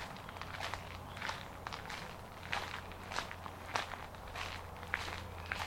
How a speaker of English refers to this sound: And begin a gentle walk. Noticing the sights and the sounds and the smell.